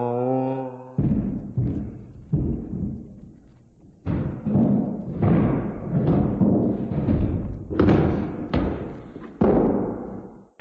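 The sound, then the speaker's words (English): Heavy, booming footsteps thud one after another at a slow, uneven pace, about ten loud reverberant steps, preceded by a short droning groan at the start; a jokey horror-movie sound effect at the end of an album's last track. “All of a sudden, there's this jokey sort of horror movie sound effects, like there's a creaking door and a screaming damsel and a moaning creature and heavy footsteps.”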